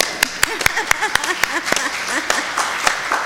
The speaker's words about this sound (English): And also I wanted to mention that we have 12 youth that are at a convention this morning, so I think that deserves a clap.